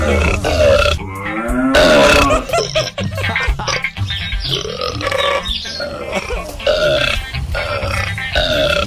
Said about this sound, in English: Those are actual cow burps, guys. Yeah, they actually are. We got them from YouTube.